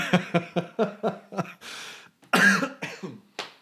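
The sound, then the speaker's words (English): A rapid burst of harsh coughs, six or so in quick rhythm, followed by a few louder, raspier hacks trailing off. Fairly loud, with no talking. “Here's my social distancing cough there, ladies and gentlemen.”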